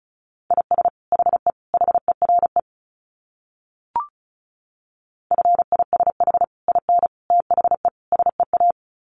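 Fast Morse code at about 35 words per minute: rapid steady beeps at one mid-high pitch, sent in two runs separated by a pause broken by a single short click.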